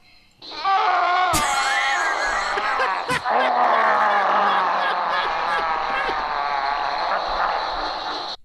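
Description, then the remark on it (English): A swamp monster lets out a long, loud, harsh scream that holds for about eight seconds, alone in a swamp, broken briefly by a couple of sharp cracks. “the next scene is Swamp Thing just screaming by himself in the swamp”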